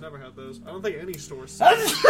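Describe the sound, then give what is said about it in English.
A person speaks in a relaxed voice, then a sudden loud sneeze bursts out right at the end, cutting across the talk. “Bless you.”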